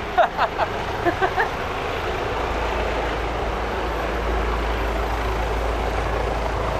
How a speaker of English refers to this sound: Bloody hell. Helicopter's coming over.